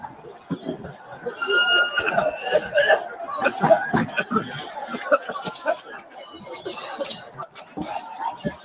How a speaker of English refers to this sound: You hear all the coughing and shit in the background. You hear everybody like coughing up a lung, and the cops start walking away because they all just gassed themselves.